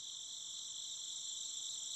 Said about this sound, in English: For a moment, they all sat there together, the stars overhead twinkling, the sound of chirping insects in the night air.